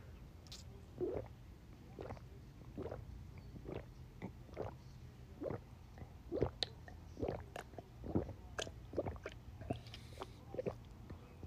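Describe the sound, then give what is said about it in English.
Gulping of water from a cup covered with aluminum foil: a steady series of wet swallows about every half second with small slurps and breaths between them, loud, with no talking. “Holy moly. Oh, water's so good.”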